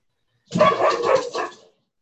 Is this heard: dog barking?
yes